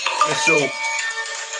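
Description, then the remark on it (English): A short melodic mobile phone ringtone plays a few stepping electronic notes, fairly loud, with a busy wash of voices or background noise running underneath throughout. “Hey, we have the same ringtone, bro.”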